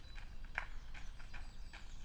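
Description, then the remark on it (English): Footsteps of a person jogging, getting closer, tap out a steady, quick rhythm, about five soft thuds over two seconds, faint against a low rumbling background with no one speaking. “Those footsteps are getting closer.”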